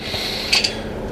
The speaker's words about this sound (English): Don't you love the sound of dice in a ceramic container? Isn't that just the best podcast audio?